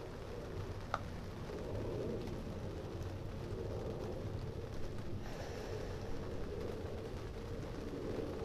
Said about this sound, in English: And the rain above, cleansing my spirit. Tropical rain so delicious. I'm sending some to you wherever you are in the world.